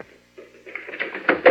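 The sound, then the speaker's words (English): A door being opened: a soft scrape, a brief pause, then a rough creaking slide that grows louder and ends in two firm knocking clunks. No voices. “Open that door, Henderson.”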